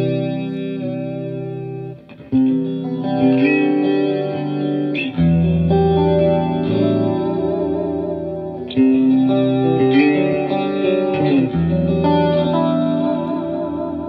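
Electric guitar chords played through a big amplifier ring out with a lush chorus shimmer and a touch of reverb, at moderate volume with a few brief pauses between strummed phrases.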